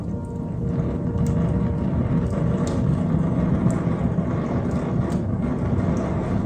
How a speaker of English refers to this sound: There's the fire kicking up there. So maybe you're loving the fireplace. If you're loving the fireplace, let me know.